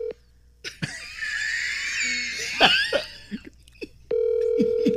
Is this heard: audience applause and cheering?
no